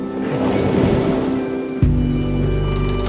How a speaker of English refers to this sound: You can hear the waves as they slosh against the wooden body of the ship.